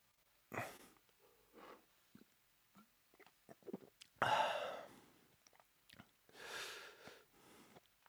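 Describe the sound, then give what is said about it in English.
Crunching and chewing of a stale chip, with a few loud, noisy bursts between quieter clicks and smacks, with no talking. “The chip was stale.”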